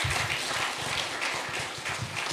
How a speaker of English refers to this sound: Thank you, everybody. Let's give an applause, please. Come on.